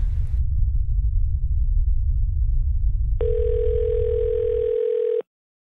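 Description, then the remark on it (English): A phone of a USGS on-call earthquake team member sounds an alert, a text message or call from a duty seismologist: one steady, buzzy electronic tone held for about two seconds, entering over a low, continuous rumble and cutting off abruptly. “so whenever our phones go off, we either text messages or a phone call from one of the duty seismologists”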